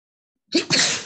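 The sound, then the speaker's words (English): A single sharp sneeze bursts out after a moment of silence, fairly loud, with a quick inhale followed by a noisy, breathy expulsion. “Excuse me. Bless you.”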